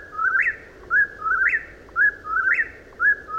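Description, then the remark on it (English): A whippoorwill calls over and over, each clear whistled phrase rising then dropping in a quick three-part rhythm, repeated three times in steady succession against a quiet background with no talking. “There is one bird that is considered to be a true hibernator, the whippoorwill.”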